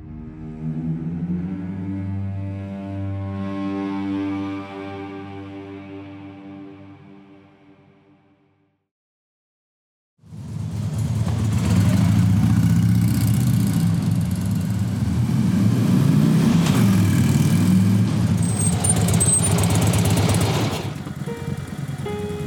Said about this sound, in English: Three motorbikes came to a halt outside the small house. The one house out of the two single houses that sat between an old factory and the edge of a palm oil plantation. The three young men killed their engines and parked haphazardly